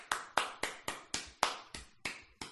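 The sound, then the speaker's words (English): A single person gives a slow, steady golf clap: about nine soft, crisp hand claps in even rhythm, alone with no talking. “But right now, sir, I am a golf clap.”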